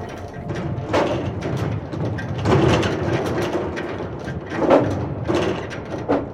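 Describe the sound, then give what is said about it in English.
A heavy metal bar clangs and scrapes as it is placed across a door, with several loud impacts over a deep, rumbling mechanical clatter and no voices. “With a mighty clang, one of the cultists placed a metal bar across the door.”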